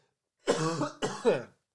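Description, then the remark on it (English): Two quick coughs in close succession, harsh and somewhat throaty, at a moderate level with no talking around them, from a person still recovering from the flu. “And if I pause a couple times because I'm coughing, I'm still recovering from that flu, so excuse me.”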